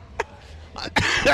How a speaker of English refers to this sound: Look, the cough is coming back up. That's it. Oh my God! It's all over.